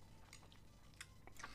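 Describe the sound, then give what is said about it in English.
Wet chewing of a big mouthful of sashimi, with soft squishy smacks and irregular bursts of mouth sounds, quiet and intimate with no talking. “That was too big a bite. Oh no, I'm gonna hear all the chewing and everything.”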